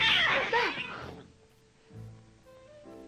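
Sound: cats meowing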